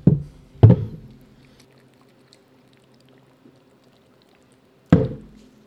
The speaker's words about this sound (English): Ah. It is so cold. Those are cold as fuck. It is really cold. You hear them glugging.